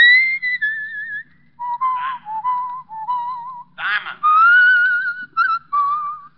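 A person whistles a cheerful tune in the radio drama Richard Diamond, Private Detective, a string of clear sliding notes that rise and fall with short pauses between phrases, loud and alone with no talking.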